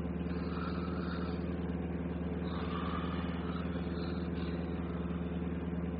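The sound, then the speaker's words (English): A bus motor drones steadily, a constant low rumble with an even hum that never changes pace for the whole stretch, with no voices over it. “you're snoring louder than the bus motor.”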